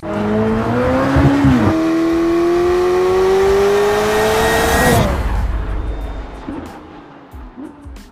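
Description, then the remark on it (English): A McLaren Elva sports car engine roars, its pitch climbing steadily through a long rev for several seconds before cutting off abruptly and settling into a low, fading rumble. “Paired back, honed and highly advanced, the Elva is the lightest road car that McLaren Automotive has ever made.”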